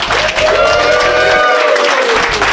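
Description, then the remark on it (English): An audience applauds a guest at the close of the Tablet Show, loud and steady, dense clapping filling the whole stretch, with a few whoops and cheers rising over it. “So one big round of applause for Mark Miller.”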